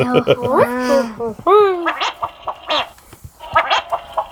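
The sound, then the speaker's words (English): A buzzy electronic warble from Ben Burtt's synthesizer, triggered by John Wayne's voice, with a voice-like, throaty quality, sounds in several bursts, including a strong rising sweep near the middle, followed by shorter gurgling blips. “So according to Ben Burt, he says it was an electronic buzzing that had come off my synthesizer triggered by a human voice.”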